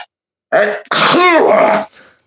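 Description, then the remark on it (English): A loud sneeze in two bursts: a short sharp intake-like burst, then a longer, strongly voiced, throaty blast, followed by a faint breathy trail. No one speaks. “Whoa, I was about to sneeze.”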